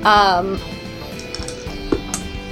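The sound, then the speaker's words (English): Small dice clatter and tumble across a hard tabletop, a run of light, irregular clicks and taps lasting a couple of seconds, just after a brief voiced sound at the start. The roll comes up a 2. “Why do my dice always travel?”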